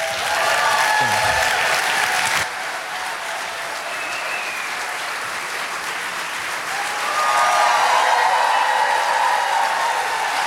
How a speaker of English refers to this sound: All right. Let's give Pastor Arthur a big hand clap.